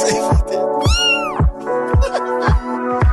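A cat meows loudly and insistently, several drawn-out, wavering cries in quick succession, with no one speaking.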